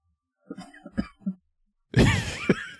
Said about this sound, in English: That was like an on-command cough. It's not. I mean, I you could have played it off as one.